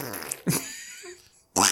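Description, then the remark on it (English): High-pitched squeaky fart-like noises in a few short bursts, with a thin whistling squeal trailing between the louder blasts, like air squeezed from a balloon's neck. “It sounds like when you squeeze the end of a balloon when there's air in it. It's like super high-pitched squeak fart.”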